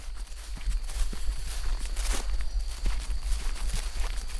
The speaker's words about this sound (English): It's early in the morning now as I'm heading outside. Still a little cool before the heat and the humidity are gonna roll in. The grass is covered in dew that I'm kicking up on my legs, and I am just heading here for the trail in the woods.